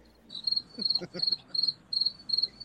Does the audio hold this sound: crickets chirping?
yes